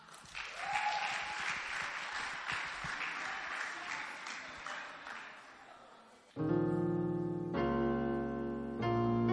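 A crowd claps steadily in a dense, sustained burst of applause for about six seconds as a singer comes up to minister to God in song, then it gives way abruptly to loud sustained keyboard or organ chords.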